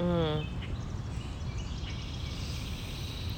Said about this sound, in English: Oh my God, listen to this. Everyone's enjoying it. The birds are enjoying it.